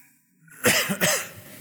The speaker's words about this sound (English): I am coughing along with him this morning, but I am awfully glad to be here this morning.